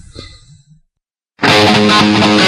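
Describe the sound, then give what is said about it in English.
After a faint breathy murmur and a brief silence, a loud, heavily distorted electric guitar bursts in alone, playing a thick, sustained chord with no other instruments: a guitarist's isolated guitar track from the Van Halen Guitar Hero video game, without production or reverb. “took those and just isolated … track”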